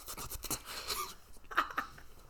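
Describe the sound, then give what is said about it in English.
Quiet, wet mouth noises of someone eating a sweet: soft clicks, smacks and crinkly sucking bursts in an uneven patter, with no talking. “Sorry, I'm eating it.”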